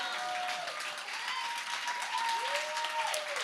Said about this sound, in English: Oh, you should be clapping like you're believing.